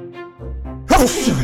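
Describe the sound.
A player performs a single loud sneeze: a rising, drawn-out vocal intake builds up before an explosive, breathy burst that trails off briefly.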